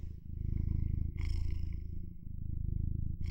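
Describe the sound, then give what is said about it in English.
A voice imitates a cat's purr, the character Jockster purring into a microphone: a steady, low rumbling vibration that carries on for a few seconds without a break, with a brief breathy hiss near the start and end. “And Jockster starts to purr and it comes through the mic.”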